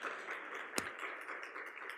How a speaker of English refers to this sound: In the room, give them a round of applause. Thank you, guys. Awesome.